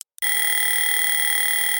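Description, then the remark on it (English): A loud, steady electronic buzzer blares after a brief click of silence, holding one harsh, sustained tone with bright overtones and no pauses until the end. “And you just absolutely have to get this thing done before that buzzer sound rings through.”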